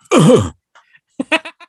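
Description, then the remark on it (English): A person imitates a cough from a 1986 comedy western film with one loud, rough, throaty burst, followed by a few short, quieter voiced bursts that trail off. “Yes, that's supposed to be the cough.”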